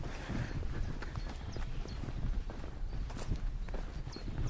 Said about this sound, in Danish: Det er islandske heste. Er det? Ja. Det er det. Hej heste.